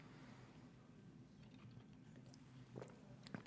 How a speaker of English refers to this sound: But without further ado, I'm going to take a sip of my Sammy Adams, and then we're going to jump in to the Masters.